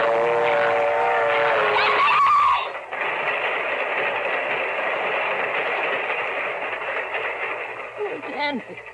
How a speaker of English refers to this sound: Hey, my foot! My foot! It's caught in the train! It's not coming down your track. It's coming down this one.